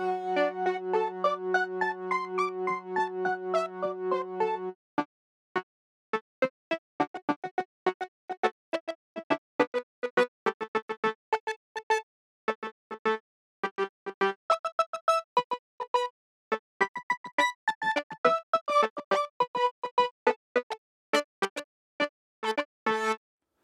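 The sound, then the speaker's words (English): Synthesizer music from a Microbrute synthesizer driven over MIDI, layered with Ableton software instruments: a sustained buzzy drone under a rising arpeggio for about five seconds, then a busy, irregular stream of short staccato notes and clicky hits. No voices. “this combination of my Microbrute synthesizer that I hook up via MIDI, so it's playing notes even though I'm not playing on its tiny little keyboard, and then there's more Ableton instruments going on.”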